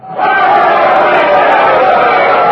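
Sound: crowd cheering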